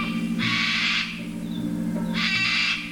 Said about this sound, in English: That screech belongs to the sulfur-crested cockatoo, the ones with the yellow mohawk.